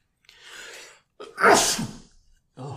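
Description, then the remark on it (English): A single loud sneeze with a breathy inhale beforehand, followed by a brief catch of breath as someone starts to speak. “God bless you.”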